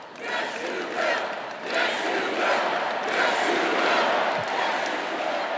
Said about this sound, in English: Speaking of loud cheers, there was one kind of weird moment tonight. The crowd was cheering, I believe, Yes, You Will.